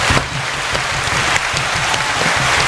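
A round of applause from a group welcomes a guest, filling the whole stretch: a dense, steady wash of clapping that stays loud throughout, with no voices over it.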